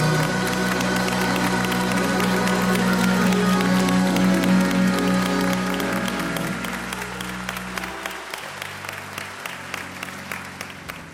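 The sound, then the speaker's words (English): An audience at an event at Mount Zion Baptist Church in Seattle claps in a dense, steady burst of applause that holds strong for several seconds, then gradually thins into scattered individual claps, with a low sustained tone running underneath. “Now come on and clap your hands.”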